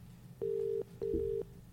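A phone rings with an incoming call, a steady electronic tone in a quick double pulse, two short bursts close together, heard clearly over a faint low background hum with no talking.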